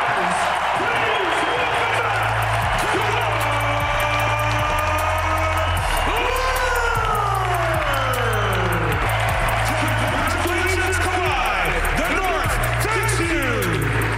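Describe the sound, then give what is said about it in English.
A loud, sustained arena crowd roar of cheering and applause in Toronto as Kyle Lowry gives Kawhi Leonard his NBA championship ring before the game, with thumping bass music and rising and falling tones running underneath the ovation. “And if you thought he was going to get booed, no, that's not how the Toronto faithful remember him.”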